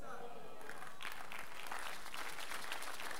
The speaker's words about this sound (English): Those who catch it, they are clapping. Are you getting it?